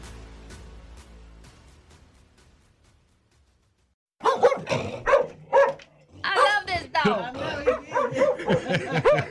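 A dog barks and yips in quick, loud bursts, the sharp calls tumbling over one another after a quieter, fading opening.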